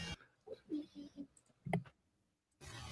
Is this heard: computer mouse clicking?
yes